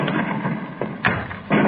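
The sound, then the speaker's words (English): Dull, muffled cannon booms from destructo cannon firing on a fortress go off in quick succession, two or three heavy thuds over a rumbling background, with no voices. “There go the cannon again.”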